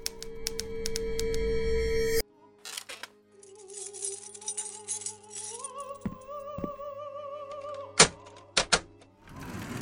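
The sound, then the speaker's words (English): Keys jingle and click in the lock of locked metal filing cabinets in a vault, a drawer scrapes open with a long squeal, then several sharp metallic thunks and clinks follow, fairly loud. “Edgar reaches into his pocket and finds the keys to the locked cabinets.”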